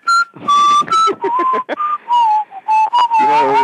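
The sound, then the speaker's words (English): Someone whistles a bright, bouncy melody, a quick run of short and held notes with a jaunty rhythm, clear and fairly loud with no talking. “Maybe I'd sing that song by …. …. So, did that whistle”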